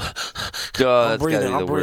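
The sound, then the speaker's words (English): A voice imitates rapid panting, recalling fast breathing after a collapsed lung, with four or five quick, breathy huffs in a steady rhythm, fairly loud. A man then starts talking. “I'm breathing fast.”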